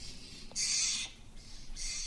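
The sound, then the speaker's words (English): Harsh, raspy calls from dozens of very noisy Steller's jays hopping all around ring out in two loud bursts, one long and one shorter, over a faint outdoor hum with no talking. “very peaceful, and there are dozens and dozens of very noisy Steller's jays hopping all around me.”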